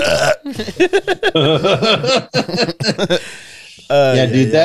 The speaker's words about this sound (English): We got a burp!